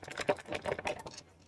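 Dice clatter and tumble across a hard tabletop in a quick burst of rattling clicks that quiets toward the end, fairly soft, with no voices.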